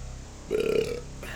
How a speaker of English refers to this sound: You know what that sound means? I failed. No, I just had to burp.